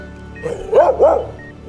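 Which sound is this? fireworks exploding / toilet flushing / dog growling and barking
dog growling and barking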